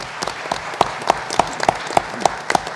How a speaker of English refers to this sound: And finally, round of applause.